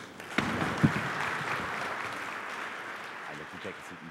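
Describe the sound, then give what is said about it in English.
A conference audience claps for the speakers at an annual conference held as part of the Rural Wonka Conference at the University of Limerick in June 2022, a dense, steady wash of applause holding for several seconds, with a few sharper individual claps at the start and faint voices mixed in underneath. “I might give them a round of applause.”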